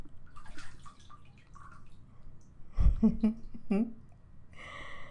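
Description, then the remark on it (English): Water drips and splashes in a short burst of wet, trickling sounds as a small animal climbs out of the water, with a soft voice murmuring before and after. “Okay, get out the water. Climb up on my leg.”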